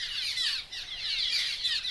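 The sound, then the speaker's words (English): A busy chorus of cliff swallow calls from a nesting colony, the birds back from wintering in South America: overlapping squeaky chirps and twittering notes in a steady, dense stream with no pauses. “Cliff swallows have returned from wintering in South America, and they're gathering in nesting colonies.”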